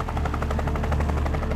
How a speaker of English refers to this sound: Alex, look up! Is that a helicopter?